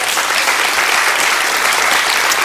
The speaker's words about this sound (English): And so if you live in a house with a roof on it, you right now you need to give God a big hand clap of praise. Come on, right now.